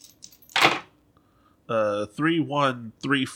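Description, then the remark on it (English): Dice rolled for a sway roll rattle and clatter in a quick burst of small clicks, ending in a sharp knock and landing on 3, 1, 3 and 4, followed by a few seconds of voices. “Oh, that dice is intense.”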